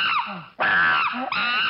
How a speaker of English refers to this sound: Monkeys are the chicks of the animal kingdom? Yeah, they're the they scream. They just scream all the time.